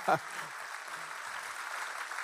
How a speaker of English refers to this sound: Come on, True North, clap for Jesus. Come on. Resurrection Sunday, clap for Jesus. Come on.